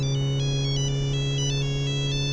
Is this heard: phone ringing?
yes